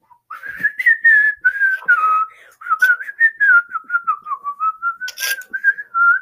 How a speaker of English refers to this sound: Oh yeah, whenever I was 11, I learned my whistling talent.